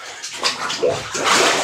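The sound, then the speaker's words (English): Bathwater sloshes and splashes in a tub, a continuous watery swishing with brief surges of louder splashing, heard alone with no voices. “I hope you're enjoying this dollop from the bath.”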